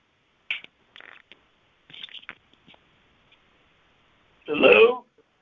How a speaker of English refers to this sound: They were just having a, hold on, I got to fart again.